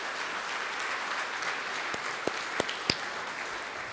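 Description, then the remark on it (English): An audience at a worship gathering applauds steadily, a dense wash of many hands clapping at an even level, with a few sharper individual claps standing out toward the end. “Man, let's give him a hand.”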